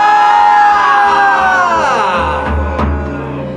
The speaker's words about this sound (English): Yeah, let's all inhale here. Open the mouth, yell it out, make some noise.